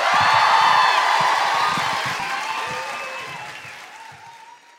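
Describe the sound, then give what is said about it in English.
A large audience at the end of a live show of The Guilty Feminist breaks into loud, dense applause mixed with cheers and a few whoops, sustained at first and then gradually tapering off. “You're going to break into spontaneous applause.”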